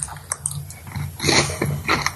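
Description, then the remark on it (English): Crunchy chewing of rabbit bones in a game pie, with a run of irregular crisp crackles and snaps that grow louder partway through, heard alone without any talking. “Very crunchy. That's the bones of the rabbit, right?”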